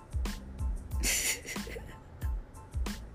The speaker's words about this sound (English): And, sorry, I had to clear my throat.